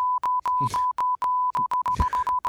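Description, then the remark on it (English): While a recorded conversation is being edited, a steady high beep tone chops on and off in quick, uneven bursts like Morse code. The beeps are loud, and a couple of brief voice fragments break through between them. “I'm fucking Morse coding myself in the future.”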